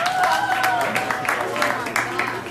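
An audience applauds, a dense patter of many hands clapping at a steady level, with some sustained cheering or whistle-like tones rising above the claps.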